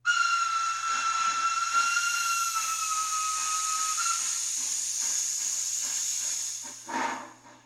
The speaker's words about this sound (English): But why aren't they ending their promotions with the steam whistle blow? You know, like, hey, stay 25 feet back.